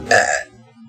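A single loud burp lasting about half a second, with a raspy, voiced texture that fades out quickly into quiet background noise.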